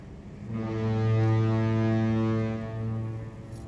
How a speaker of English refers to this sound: I've found a lot of use for these foghorns, including a series we did entitled 2 Minute Film Noir.